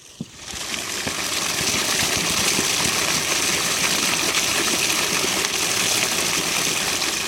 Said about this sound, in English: So what he's picking up looks like an old towel that somebody put there to cover the hole. So he opened, oh yeah, he opened the hole, and now the water is coming out down here through a pipe.